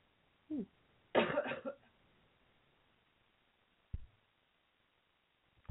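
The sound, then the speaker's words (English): A loud cough bursts out after a short throat sound, followed by a few quieter, scattered coughs or throat clears with near silence between them. “So, sorry, I have to cough 1 second. I'm going to turn this off.”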